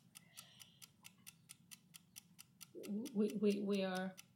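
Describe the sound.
A clock ticks in a quick, steady rhythm of sharp clicks. Partway through, a person starts talking over the ticking, which carries on under the voice.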